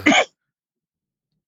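A single short, explosive sneeze bursts out, lasting only a moment before silence follows.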